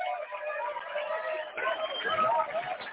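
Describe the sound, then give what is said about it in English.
A group of bus passengers cheering and hollering together, a loud, continuous wall of overlapping voices with a slightly thin, muffled quality, swelling a bit louder toward the end. “You know, every time I hear all of our bus people cheering like that and all that, mm-hmm.”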